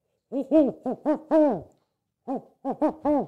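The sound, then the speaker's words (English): A person's voice imitates an owl, giving five quick, rising-and-falling hoots, then a short pause and three more. The hoots are clear and fairly loud, with no other sounds. “By the way, I got to do my impression. We're talking about owls.”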